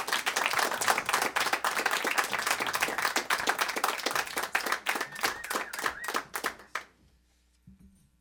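An audience claps for several seconds, a dense stream of sharp, overlapping hand claps that holds steady and then trails off into near silence.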